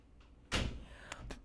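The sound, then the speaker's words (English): A door shuts with a solid thud, followed by a couple of quick clicks or knocks from the latch settling, moderately loud. “Close the door all the way, please.”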